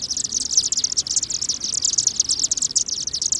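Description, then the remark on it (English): A dense, continuous chorus of high, rapid chittering calls from a flock of chimney swifts entering their communal roost in a chimney for the night, steady and layered over a low rumbling background. “We've just witnessed a flock of chimney swifts enter their communal roost site for the night.”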